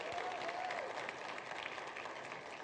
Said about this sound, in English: I want you to give a big Encounter Church round of applause